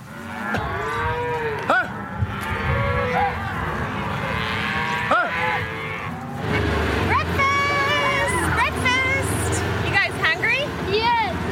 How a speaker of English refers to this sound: So hard because there's a lot of cows and calves here.